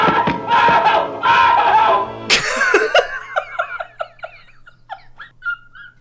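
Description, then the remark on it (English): A cartoon character from Tom and Jerry lets out a loud, strained yell of pain in a few drawn-out bursts, followed by a sudden sharp burst and then a run of short, rising-and-falling laughs. “There is so much pain in that yell, and the muffle heard through the wall while he's still clearly in pain from that thing.”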